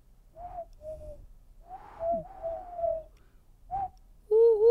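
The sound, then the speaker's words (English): A person imitates a wood pigeon's cooing, producing a rhythmic phrase of soft, hollow coos, ending with a louder, brighter vocal note. “And you hear a wood pigeon.”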